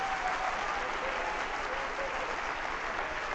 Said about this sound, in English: No, don't be seated. Get up. Clap your hands.